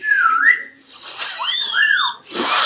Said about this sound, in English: First off, just putting just your fingers semi in or near your mouth and then blowing is not how you whistle. It's not even close to how that is actually possibly true.